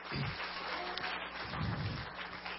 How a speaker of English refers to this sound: Can you put your hands together for him? Come on. Put your hands together for the Lord this morning. If you know him, if you love him, put your hands together. Come on. Don't stop.